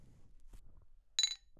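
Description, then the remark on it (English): A single bright clink of two Topo Chico glass bottles tapping together in a ceremonial first toast, sharp and ringing briefly, preceded by a few soft low rustles and bumps. “So for those of you that are wondering what's going on, we have to do the ceremonial first clink, but there was only one cold Topo left, so I have a warm one to clink.”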